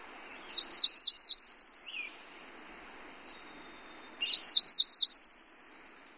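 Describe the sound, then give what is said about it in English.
A cerulean warbler, a bird of the hill country, sings two separate phrases of rapid, high, buzzy notes that speed up and rise at the end. The song is clear, with quiet pauses between phrases and no voices. “talks about birds of the hill country, cerulean warbler.”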